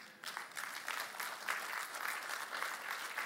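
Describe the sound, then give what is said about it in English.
A light, scattered round of polite golf-clap applause, soft claps pattering steadily for a few seconds, with no voices over it. “Thanks for the golf clap.”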